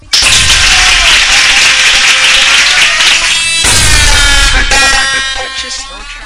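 Dense, steady applause fills the whole clip, loud and continuous, with cheering and whistle-like tones mixed in, then tapers slightly toward the end.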